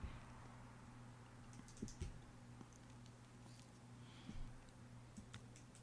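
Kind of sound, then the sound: sound effect, clock ticking countdown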